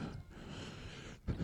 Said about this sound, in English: You're breathing so hard on the mic. That's all I can hear. Can you imagine somebody being on a podcast and just breathing really hard?